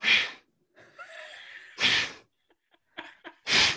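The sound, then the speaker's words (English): A person imitates how a coworker who sits next to them at an office desk breathes: three loud, harsh huffing breaths spaced roughly evenly, with softer wheezy, snorting inhales in between. “We sit next to each other on a desk in the office, and this is how he breathes.”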